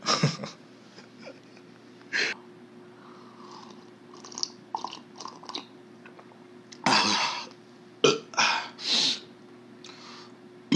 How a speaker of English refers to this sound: Excuse me, oh my god, I always burp.